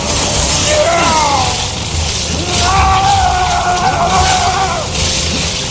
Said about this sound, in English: The lizard again. Pretty good screaming, I have to say. But yeah, it is Sega CD lizard-esque. I love it.